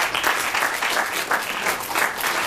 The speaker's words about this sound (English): Round of applause.